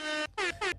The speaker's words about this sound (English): Air horn again.